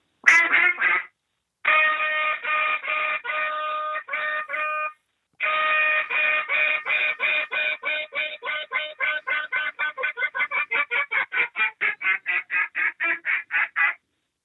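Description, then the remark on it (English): Loud duck call blown in a contest routine as it would sound on stage: long raspy quacks at first, then a rapid, accelerating string of short quacks ending in a fast chatter. No talking. “So if I were to do the duck calling in a contest, you know, it's going to sound like this up on stage.”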